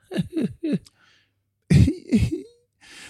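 Three quick, small coughs in a row, a brief pause, then two heavier, louder coughs up close, followed by a faint breathy rustle.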